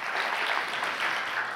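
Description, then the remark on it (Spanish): A church audience claps steadily as applause to God, a dense, even wash of many hands applauding without pause, with no voices rising above it. “¿Cuánto le pueden dar un aplauso a Dios por eso?”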